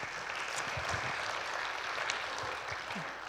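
A crowd applauds steadily, a dense wash of many hands clapping at once that holds an even level for the whole stretch without rising or fading, with no voices over it.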